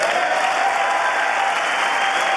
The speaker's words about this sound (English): At times stoic as Democrats applauded the speech.